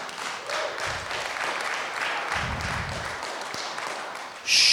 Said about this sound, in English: Easy on the clapping.